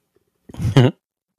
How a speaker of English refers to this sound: sorry, I got to sneeze.